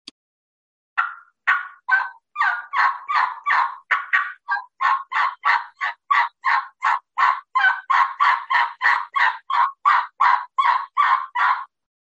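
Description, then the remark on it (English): A long, steady string of about two dozen raspy turkey yelps from a hunter's call, old hen assembly style, strung out in a pleading fashion, loud and evenly paced for roughly ten seconds with no talking. “It's more of a fall call, maybe, but that is the old hen assembly. Again, it's a series of yelps, and you just string the yelps out into a pleading fashion like this.”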